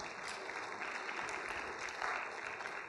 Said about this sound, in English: That's even too beautiful for a real reserve clap. One person claps and everybody else claps, but we're not really committed to the clap, and so we halfway clap.